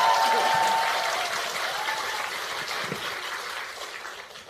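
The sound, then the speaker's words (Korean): A crowd applauds steadily, a dense wash of clapping that starts loud and gradually tapers off over a few seconds, with a few faint voices mixed in, applauding to gauge whether Park Chan-dae's song or Jeong Cheong-rae's poem is better. “박찬대의 노래가 더 좋은지 정청래의 시가 더 좋은지 박수 소리를 한번 가늠해 보도록 하겠습니다.”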